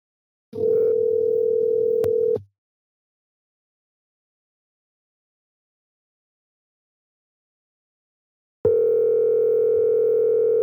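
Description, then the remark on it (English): Two loud, steady electronic ringback tones on an outgoing phone call, each about two seconds long and separated by a long silent gap, with no voices present. “All right, I'm gonna call somebody real quick.”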